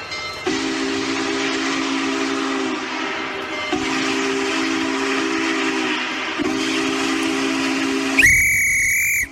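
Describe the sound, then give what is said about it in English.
A steam train sound effect introducing the Groove Train: the train rumbles and hisses steadily in three long surges, then a loud, shrill steam whistle blasts once near the end. No voices are heard. “It's time to climb aboard the Groove Train.”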